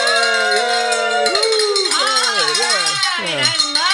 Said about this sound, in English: But what that means is you get to ring up the bell. So pick it up and ring it.